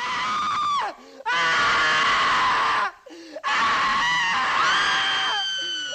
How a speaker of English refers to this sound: A scream at the right time may save your life.